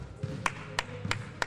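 A few sharp hand claps from one person giving a small round of applause, about four, spaced unevenly over a second and a half, each a bright crisp smack with a low murmur of background noise between them.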